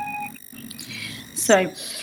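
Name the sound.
electronic beep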